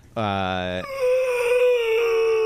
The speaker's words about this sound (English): These spiders make the fucking most annoying noise.